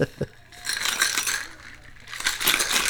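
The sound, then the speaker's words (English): A cocktail shaker holding a drink with curacao and lime juice is shaken hard, ice clattering inside in bright, rapid metallic rattles that swell and ease over a few seconds, with no talking. “And now we are just going to give everything a shaky shake.”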